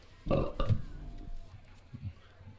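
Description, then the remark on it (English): A loud burp erupts in a single rough, throaty burst lasting under a second, then trails into quieter low grumbling noises with no speech. “We'll be discussing and rating these beers with these Suds ratings, plus our signature belching sounds.”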